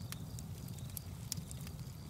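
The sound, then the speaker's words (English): A campfire crackles steadily, with scattered sharp pops and snaps over a low, soft rumble of burning, moderately quiet, with no voices. “And now, let's head to the campfire”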